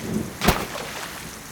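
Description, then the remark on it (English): Heavy rain pours steadily in a dense, hissing wash during a storm on a foggy shore, broken early by a single sharp crack like a thunder snap, then the downpour continues unchanged. “The storm was letting up in ferocity, and the fog seemed to be pulling away from the shore, but a dense rain was falling.”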